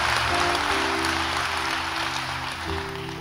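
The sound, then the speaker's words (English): A crowd claps steadily and fairly loudly for a few seconds, a dense wash of hand claps over low, sustained musical tones, with no one speaking. “Oh, you should clap more than that.”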